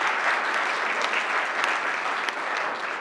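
A crowd claps steadily for about three seconds, a dense, even wash of many hands with a few sharper individual claps standing out, holding at a fairly loud level throughout with no voices.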